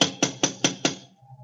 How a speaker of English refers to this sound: They don't seem to answer, do they? Try knocking again.